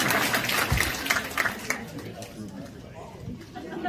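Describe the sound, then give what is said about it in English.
An audience breaks into a short burst of applause after a panel guest tells of her faith journey, a dense patter of many hands that is strongest at the start and tapers off, with crowd murmur and chatter underneath. “You didn't applaud for anybody else.”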